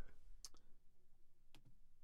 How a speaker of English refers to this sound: now you're just killing time with dead air typing on the computer.